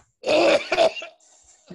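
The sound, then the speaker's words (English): A person forces out a fake, raspy cough, two rough bursts close together, followed by a brief quiet breathy sound; it sounds deliberate rather than natural. “Tried to fake, I tried to fake fucking cough and then I, it like, it's it like dope.”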